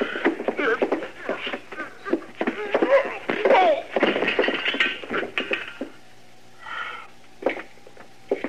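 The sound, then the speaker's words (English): A busy scuffle in which an old man knocks another man to the ground: strained grunts, heavy breathing and scattered thumps for several seconds, ending abruptly, followed by a short quiet stretch and a few isolated bumps. “Why, that old fool, he knocked me down.”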